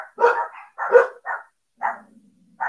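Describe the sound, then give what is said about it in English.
A dog in a house barks loudly, firing off five sharp barks in quick, uneven succession with short pauses between them, and no one talking. “The dog started freaking out.”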